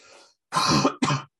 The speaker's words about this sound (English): I coughed.